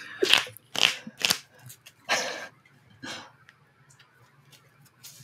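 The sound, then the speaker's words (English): Crunchy chewing near the microphone by a person eating while talking, with several loud, irregular bites in the first few seconds, then quieter, sparser mouth sounds. There is a low hum underneath and no talking. “You're chewing as you're talking. Could you mute yourself while you chew?”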